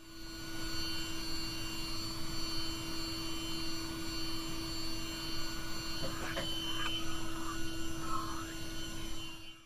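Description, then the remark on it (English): Constant mechanical whirring inside a spacesuit during a spacewalk, recorded by Canadian astronaut Chris Hadfield. A steady fan-like roar with a droning hum, about as loud as sitting in a city tram, is broken briefly by a few faint chirps and clicks toward the end. No one speaks. “But to give you some idea of what it does sound like inside a spacesuit, here's a clip recorded by Canadian astronaut Chris Hadfield.”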